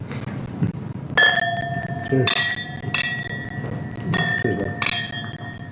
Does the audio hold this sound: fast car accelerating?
no